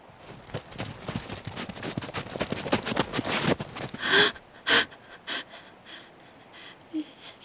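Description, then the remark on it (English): Ragged, wheezing breaths of a man rasp in a rapid, labored stream, then thin out into a few sharp, isolated gasps separated by pauses. “Is he alive? Is he still breathing?”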